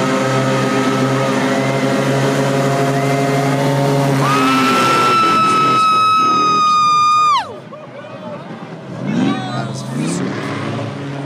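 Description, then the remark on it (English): A fast air-propelled vehicle with no engine races down a street with a loud, rising whine that holds steady for a few seconds and then abruptly drops away, while a crowd chatters in the background. “I mean, I see why now, because there's no actual engine. It's just propelled by air. But look at this. I didn't realize they're this fast either.”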